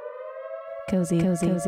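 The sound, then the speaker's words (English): An alarm siren sound effect blares as a steady, sustained tone, then voices cut in loudly for the rest of the short clip while the siren pitch carries on underneath. “We've got another cozy alert. Everybody sound those cozy alarms.”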